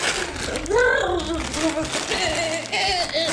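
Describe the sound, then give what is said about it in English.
Paper crinkles and crackles in a dense, scratchy burst as a woman crumples up a piece of paper, while she hums and hisses along, doing an impression of the crumpling sound with gliding, voiced tones. “She then takes a piece of paper and crumples it up and tries to do an impression of that sound.”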